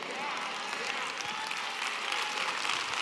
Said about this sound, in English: Do y'all notice how the claps are getting lower and lower?